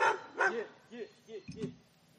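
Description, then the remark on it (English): A dog barks in a quick series of about five short, sharp woofs, spaced unevenly over two seconds, moderately loud with no one talking over it. “I'm gonna stop this dog.”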